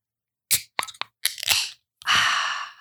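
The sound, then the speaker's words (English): Two Roads and Tribus beer containers being cracked open: a few sharp metallic clicks and snaps, then a loud hiss of escaping fizz that lasts nearly a second. No one speaks. “But for right now, let's crack these babies open.”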